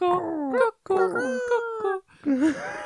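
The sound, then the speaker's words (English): A dog kicking up a fuss howls and whines in distress, three loud, wavering wails, each rising and falling in pitch with short breaks between them. “This is because the dog's kicking up a fuss.”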